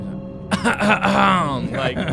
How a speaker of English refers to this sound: Like some of that, really clearing your throat over there. Yeah, because I just ate.